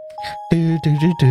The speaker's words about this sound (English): Cue Christmas music.